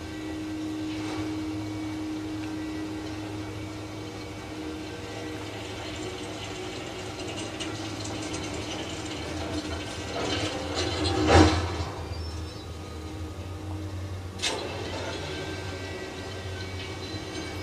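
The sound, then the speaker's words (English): A cable car lift crossing over a ravine drones steadily with a low mechanical hum, broken by a sharp, loud clank and rattle near the end and a softer clunk a few seconds later. “Well, looks like I'm going to it's not a ski lift, because this isn't a ski slope, but it's like a ski lift.”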